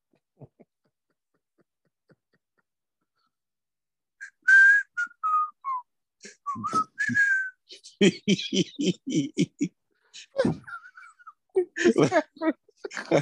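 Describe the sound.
A person whistles a short, wavering tune of a few sliding notes, clear. Then voices start talking over it, and a brief whistled phrase returns among the chatter.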